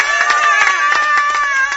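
A crowd of campers applauds, a steady wash of many overlapping hand claps mixed with excited cheering and shouting, loud and sustained without pause.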